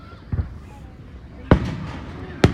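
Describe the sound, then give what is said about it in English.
A firework bursts with a sharp boom, followed by a crackling tail and another sharp bang, with small scattered pops in between; a faint voice murmurs underneath. “That one went off and like exploded, but then had other little explosions with it.”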